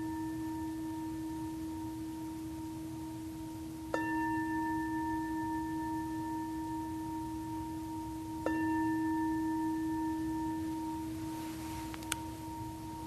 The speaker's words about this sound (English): In a few moments, I'll ring the bell.